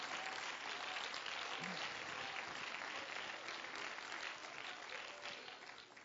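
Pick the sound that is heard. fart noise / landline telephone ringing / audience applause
audience applause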